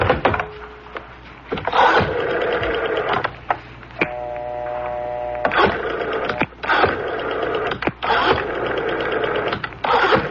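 A telephone number being dialed from an office extension, starting with 9 for an outside line, to call a man's wife: loud mechanical whirring bursts with clicks between them and a brief steady tone partway through. No one speaks.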